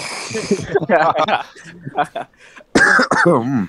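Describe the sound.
A person coughs and clears their throat several times up close, the rough bursts mixed with voiced murmuring and a short pause before a louder final fit.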